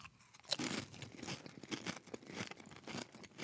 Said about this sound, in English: Chew it up.